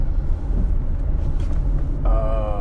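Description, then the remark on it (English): Traffic rumbles steadily outside as cars pass by, a low continuous roar, and near the end a tonal engine whine or horn rises over it. No one speaks. “Come on, you stupid cars. That is annoying.”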